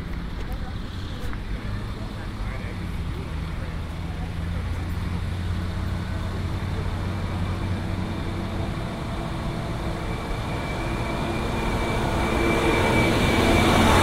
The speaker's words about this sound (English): I'm gonna ride the back of the tram.